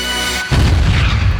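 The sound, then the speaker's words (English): A steady tonal hum is abruptly cut off by a truck explosion, a sudden loud blast with a deep, rumbling low end that keeps roaring for the rest of the moment. No voices. “The truck explodes.”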